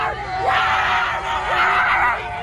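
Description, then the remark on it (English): A group of leftist protesters near Los Angeles loudly imitate dogs at Trump supporters, barking and yapping in overlapping, shouty yelps, with sharp rising cries breaking through a steady, noisy wall of voices. “Leftist protesters have begun literally barking like dogs at Trump supporters.”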